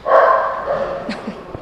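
A small office dog barks in a quick, high-pitched burst followed by a couple of short yips, saying hello while peeking through a window, clear with no talking over it.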